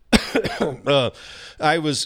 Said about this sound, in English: when I was coughing to start, I was kind of coughing just to get it out